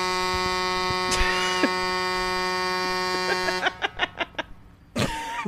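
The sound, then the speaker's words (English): A car horn blares in one long, unbroken, buzzy tone for over three seconds, then cuts off into a quick run of short, sharp pulses before a brief burst of rough noise. “That is, if someone is honking that long, you can only assume it's their unconscious forehead.”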